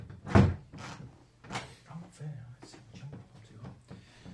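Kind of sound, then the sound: household object, door being closed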